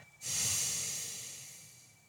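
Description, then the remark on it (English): A single long, airy exhale through the nose, breathing out all the breath during a guided breathing exercise, starting abruptly and slowly fading over about two seconds, fairly soft, with no talking. “And so let's begin by breathing out all our breath through our nose.”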